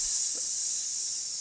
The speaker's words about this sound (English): I'm sure that snake was hissing in her ear.